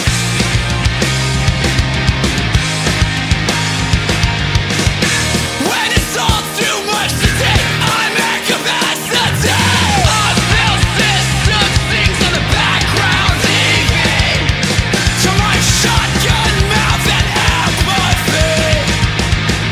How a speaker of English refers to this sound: So they went out and they just recorded a bunch of videos of all their friends with their dogs, and they set it to this fucking really cool hardcore song.